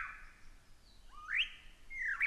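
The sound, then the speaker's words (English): Bright, sweeping bird whistles rise and fall in clear, ringing phrases, lyrebirds singing in the morning in a forest in Australia, with no voices present. “a heartfelt word of gratitude to these lyrebirds for letting us stay here with them this morning”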